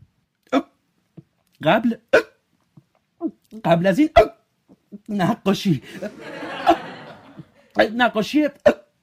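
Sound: hiccups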